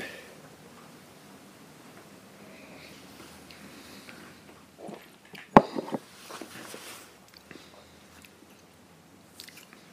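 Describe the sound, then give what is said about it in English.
Quiet sipping of a 58.4% whisky: soft wet mouth sounds and a brief slurp, with a sharp glassy tap around the middle and a low hush otherwise. “Let's take a sip, and then I'll talk about the non-age expression.”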